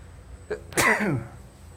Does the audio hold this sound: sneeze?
yes